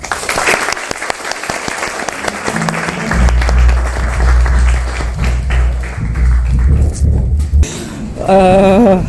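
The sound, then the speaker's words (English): An audience claps steadily after a panel discussion in a dense wash of applause, joined partway by a low sustained hum and ending with a brief rising-and-falling warbling tone. “And just before we have a big round of applause, don't forget the tours.”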